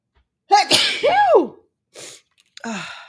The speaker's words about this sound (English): There's, another sneeze.